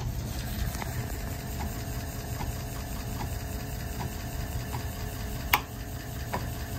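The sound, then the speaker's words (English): A 5.25-inch floppy disk drive, wired up to a Feather board running a mass storage demo, spins with a steady mechanical whir, faint regular ticks repeating underneath and one sharper click near the end. No one speaks. “You spin me right round, baby, right round, like a floppy disk.”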